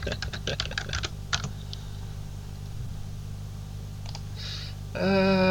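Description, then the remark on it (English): A quick flurry of crisp computer keyboard typing as someone looks something up, followed by a quiet pause with a few scattered mouse clicks, then a steady tonal hum rises at the very end. “If you hear clicky mouse noises, it's because I had a terrible mic. And you're going to hear a keyboard, so sorry about that.”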